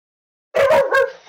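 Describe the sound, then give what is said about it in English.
A few sharp dog barks in quick succession, fairly loud, breaking abruptly out of silence and trailing into a brief whiny tail. “Dogs, please, no.”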